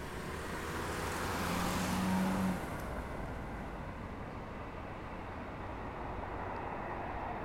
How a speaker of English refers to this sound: There's a plane there. Not a lot of poke flashing it at a plane, is there? Where? Just gone overhead.